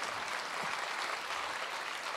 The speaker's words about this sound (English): So I think this is a, you can applaud that.